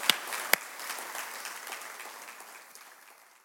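Scattered audience applause, a dense patter of many hands clapping that starts with a couple of sharp claps, then thins and fades out over a few seconds.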